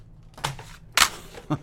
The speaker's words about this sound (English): CD shuffling.